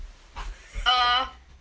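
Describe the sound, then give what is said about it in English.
A bedroom door creaks briefly on its hinges, a strained squeal lasting under half a second, then shuts with a sharp latch click at the very end. “Carry on reading, I've got to close my door.”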